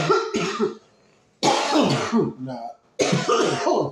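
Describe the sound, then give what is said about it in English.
Three loud bursts of harsh coughing and throat clearing while smoking cannabis, each followed by a rough rasping tail, separated by brief pauses. “We coughing a lot?”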